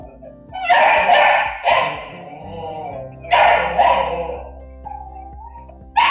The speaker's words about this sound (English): Well, I have a sound of another golden retriever puppy who is not a talking dog. And I was hoping you could translate for me. So I'll play the sound for you.